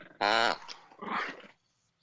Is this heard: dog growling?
yes